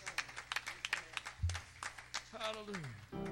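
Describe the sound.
A church audience claps to the Lord during morning worship in a steady rhythm, sharp bright smacks repeating several times a second, while voices rise over the clapping toward the end, including a sung or drawn-out tone.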